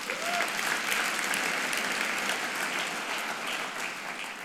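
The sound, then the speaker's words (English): A church audience over Pentecost weekend claps their hands for a pastor and an elder greeted as the church's parents, in steady, dense applause, a broad crackling wash that holds at an even, fairly loud level throughout before easing slightly at the end. “Let us clap hands for our parents.”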